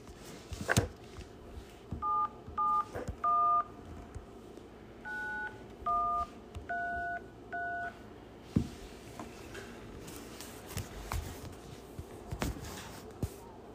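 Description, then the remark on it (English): A quick series of about eight phone keypad dialing tones as a number is dialed on a phone, each a short two-pitched beep in an uneven rhythm, over faint background noise and a few handling knocks. “Make the phone call.”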